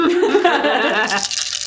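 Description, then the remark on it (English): A dry, clattering rattle of loose finger bones from skeletal hands, shaken together like dice and put into a pouch, a dense run of clicks lasting under two seconds, with a voiced, laugh-like tone underneath at the start. “There is a disturbing, almost dice-like sound.”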